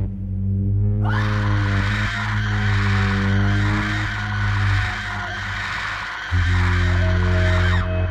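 A sustained, shrill, high-pitched scream erupts after a low droning tone and continues loudly for several seconds, wavering in pitch without pause, with a deep hum persisting underneath.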